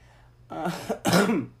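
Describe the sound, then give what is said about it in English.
Two harsh, raspy coughs or throat-clearing bursts, the second one louder and fuller, with no talking. “excuse me, again with the coughing, I really apologize.”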